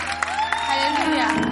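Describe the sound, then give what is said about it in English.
An audience applauds as the next testimony is introduced, with steady, dense clapping throughout, while a drawn-out voice-like cheer or whoop glides in pitch above the clapping. “Oh, keep clapping, keep clapping.”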